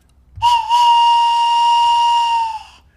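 A steam train whistle gives one long, loud, shrill blast with a brief stutter at the start, holding a steady pitch for about two seconds before cutting off. No one speaks.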